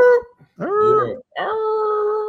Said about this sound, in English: I'm going to figure out what type of dog that is.